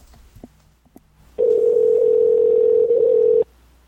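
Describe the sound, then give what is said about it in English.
A steady phone ringback tone sounds loud for about two seconds, a single unbroken electronic hum, preceded by a couple of faint clicks. “Oh, it's ringing.”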